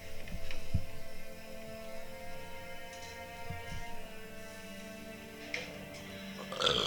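A low, drawn-out burp rumbles with a croaky, voiced drone, broken by a couple of short guttural bursts. It is fairly quiet, with no talking.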